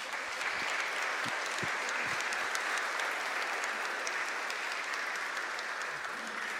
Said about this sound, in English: I think it's entirely appropriate to give them a round of applause.